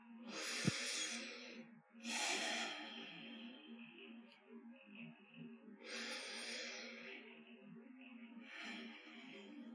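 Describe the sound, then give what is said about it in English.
A person sitting up straight breathes slowly and steadily in and out as a soham breathing practice, with long airy breaths rising and fading in a gentle rhythm over a low background hum, and a single soft click near the start. “So as you sit up straight, you know, you've got your mara, and then breathe in and out.”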